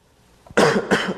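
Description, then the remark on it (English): Two sharp, harsh coughs in quick succession, loud, with nothing else audible around them. “Hey, cough in my direction.”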